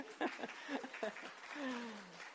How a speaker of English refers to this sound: Oh, don't clap for me. Don't clap.